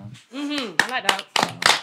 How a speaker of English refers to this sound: Are we clapping after every single one? No, we're not.